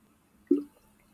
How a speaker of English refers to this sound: So let me take a sip here.